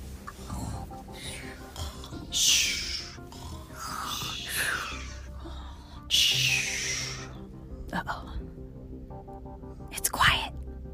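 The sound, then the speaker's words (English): Several children imitate snoring and sleepy breathing, making overlapping breathy snorts, whispery huffs and drawn-out exhales in uneven bursts, some rough and nasal like pig-like snores, at a moderate level. “Can you guys make your best sleeping sounds?”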